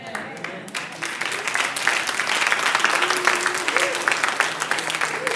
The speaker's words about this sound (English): Amen. I'm so glad I got applause on that last line.